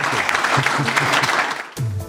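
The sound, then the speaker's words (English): A crowd applauds Tom Doorley and Michael Kelly with dense, steady clapping for under two seconds, then the applause cuts off abruptly as a voice begins. “But a big round of applause for Tom Doorley and Michael Kelly.”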